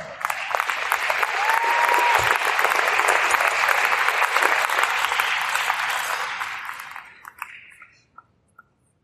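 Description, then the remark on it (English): A large audience at a Hall of Fame induction ceremony breaks into sustained, dense clapping for the new inductees gathered on stage for a group picture, holding steady for several seconds, then tapering off into a few scattered final claps. “I would like to invite all of the Hall of Fame new inductees up here for a giant picture and all of your applause one more time.”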